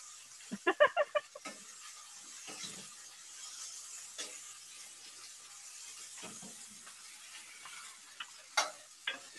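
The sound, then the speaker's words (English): Food sizzles steadily in a pan with a bright, crackling hiss, punctuated by a quick cluster of clinks and scrapes early on and a few more near the end as it's stirred. “Some people are here for the sizzling sounds.”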